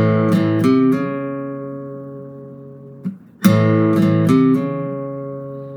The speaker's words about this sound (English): And then with our second finger, our second and third, we're going to hammer on the A string from 3 to 4.